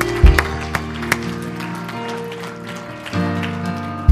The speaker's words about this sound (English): You love the Lord this morning? Give him a hand clap and a shout. Hallelujah.